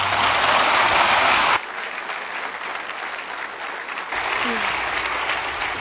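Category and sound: crowd, audience applause welcoming speaker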